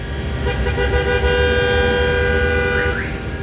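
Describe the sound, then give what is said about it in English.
Car horns honk over dense traffic noise in Manhattan, New York City, several sustained blasts overlapping, with a steady low rumble of engines underneath and no voices. “Anyone who's been to New York City knows that Manhattan is almost a continual traffic jam certain times of day.”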